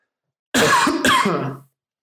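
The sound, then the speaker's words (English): Two loud coughs in quick succession, sharp and harsh, with no talking around them, caused by chili being cooked in the kitchen. “Now, you might have, I've coughed a couple of times on this already.”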